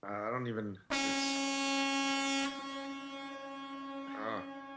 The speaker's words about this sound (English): Is that a train horn? Huh? Is that a train horn? This is a truck horn.